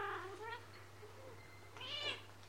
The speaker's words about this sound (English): Sorry, it's my cat.